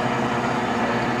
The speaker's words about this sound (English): Interruption from the coffee machine. It's a great sound. Some ASMR.